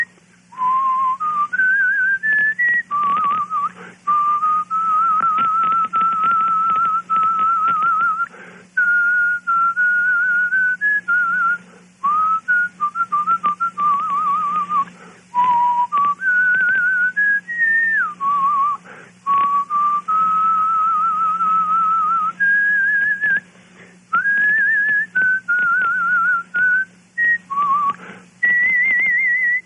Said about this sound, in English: You want to give a little whistle? You give us a little whistle and let me call you a trio. We're going to put you on the spot.